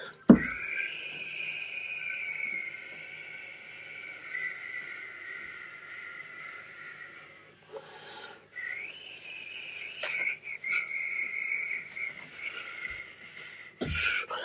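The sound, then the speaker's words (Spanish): A voice imitates a sea breeze, making the sound to help listeners fall asleep calmly, with a long, steady, high-pitched breathy whistle that wavers slightly, breaks off briefly midway, then resumes, with a few sharp clicks scattered through. “Pongan oído, que es la brisa del mar.”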